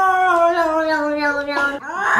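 A long, drawn-out meow from a cat, sliding slowly downward in pitch, followed by a brief rising cry at the end.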